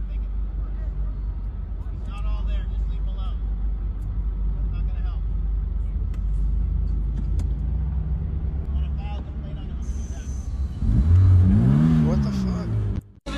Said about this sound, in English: All right, so this girl's driving a fucking car, and it sounds like it's a really fancy car because it makes loud noises. But it's not. It's just like a fucking Honda with a stupid thing on the end.